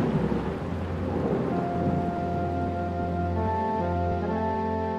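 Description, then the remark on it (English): A loud thunderstorm at sea with raging waters: heavy rain hisses continuously while deep thunder rumbles and rolls throughout, with steady low tones droning underneath and no voices. “Lord, save us from the raging waters. The storm's gone wild.”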